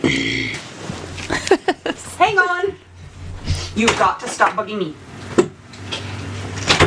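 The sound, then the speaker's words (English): Several sharp, irregular thumps of a young son banging on a door, coming in short bursts while a person talks over them. “And my son is banging on the door again.”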